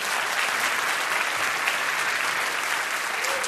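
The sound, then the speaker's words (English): A steady round of applause from a debate audience, given for a radio broadcast segment, dense clapping at an even level throughout with no voices breaking through. “Actually, it would help me if you did a little round of applause to come back into this one, and you'll hear what I'm doing.”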